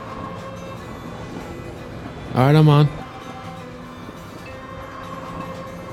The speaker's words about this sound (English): This is a special kind of train. This train doesn't actually stop, so we have to actually run and jump onto the train, so get ready.